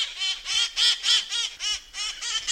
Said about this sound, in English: Despite their raucous nature, the parrots delight many tourists and locals. Come to San Francisco, and you might just spy the wild parrots through the fog as they seek their lush diet of pine seeds and juniper berries.